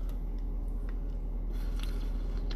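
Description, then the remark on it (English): Someone drinking water: a few soft gulps and wet mouth clicks spaced out over a low, steady background hum, with no talking. “Is that good water? Yeah, thanks for the water, man.”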